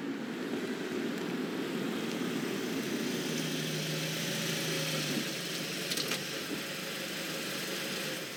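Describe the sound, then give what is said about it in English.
A council van's engine idles steadily at Hexhorn's marketplace, a continuous low, even rumble with a faint hum that holds for the whole stretch, no voices over it. “When Becky Boskill arrived at Hexhorn's marketplace, there were no other cars parked up, just a council van, with its engine idling, whilst a man in high-vis trousers and jacket emptied the litter bins.”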